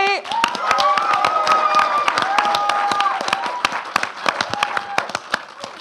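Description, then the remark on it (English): An audience claps steadily and loudly for several seconds for a competitor in a contest, with a few whoops and cheers rising over the applause before it thins into scattered claps near the end. “could we give a huge round of applause to Poppy?”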